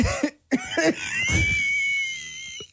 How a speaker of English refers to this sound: No, it's like burping a baby. I know when you got one more wheeze in you.